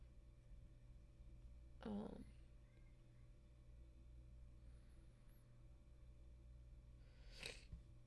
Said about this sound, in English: Sniffles.